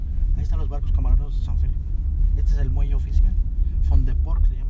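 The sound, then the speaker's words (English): Steady low engine rumble from inside a car moving along a coastline, continuous throughout, with voices talking over the drone of the road. “So Ernesto, Alex, and I get back in the car to go see how things work over there.”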